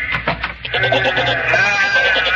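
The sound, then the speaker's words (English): Several sheep bleat together outside the door in a loud, wavering chorus, their overlapping cries sustained, with no voices speaking. “Horace has come back again, and he's brought all his little sheep friends with him.”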